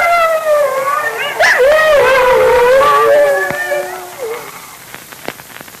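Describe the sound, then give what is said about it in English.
Wolves closing in during a Dick Tracy radio adventure howl in long, wavering, overlapping cries that rise and bend in pitch, fairly loud, then fade after a few seconds, leaving a few faint sharp clicks. “Well, the wolves are closing in, and Moccasin and Junior are short of arrows.”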